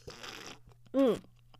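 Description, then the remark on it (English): A short slurping sip of gas station coffee, followed after a brief pause by a quick, satisfied vocal 'ahh' with a falling pitch. “Like, listen to this nice little sexy sip.”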